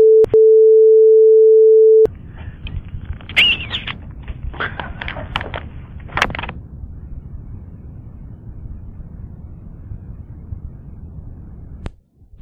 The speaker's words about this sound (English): So what you hear there are several calls where people hung up before they left a message. You hear the beep and a dial tone.